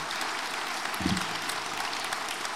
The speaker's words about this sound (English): Applause. That's good.